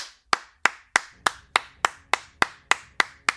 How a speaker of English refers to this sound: Where could... Belvir began saying, but the sound of mocking claps interrupted him.